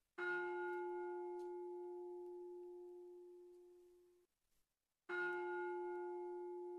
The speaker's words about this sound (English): this is in tribute to our two donors. We're going to be ringing the bell today.